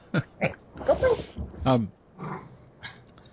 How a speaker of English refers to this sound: My dogs are going to make some crazy sounds. I'm so sorry. It's okay. That's what they. That's what dogs do. Yeah, they want attention. They're jealous.